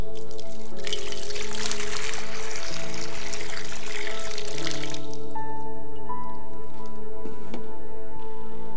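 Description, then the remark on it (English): Water is poured into a basin in a steady, splashing rush lasting about four seconds, then stops abruptly, leaving soft sustained music and a few faint drips. “But before he poured out his blood, he poured out the water into the basin and he got in the dirt and he washed off the dirt, their feet.”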